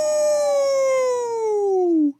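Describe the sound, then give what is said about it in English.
A person lets out one loud, sustained howl, a wavering tone that starts high and slowly slides downward for about two seconds before cutting off abruptly. “Let me get that howl.”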